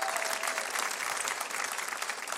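A steady round of audience applause, dense overlapping claps sustained at an even level for a couple of seconds without any voices on top.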